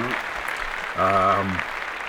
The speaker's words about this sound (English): So, a round of applause to everybody on the productions list. Good for them.